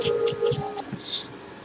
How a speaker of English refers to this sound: Hang on, my phone's ringing.